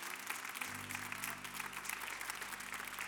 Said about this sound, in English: Why don't you one more time give a round of applause to the Lord and give him praise.